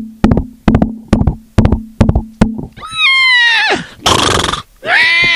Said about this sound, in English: I grab the most heaviest rope I have. And I go on my horsey and I gallop as fast as I can.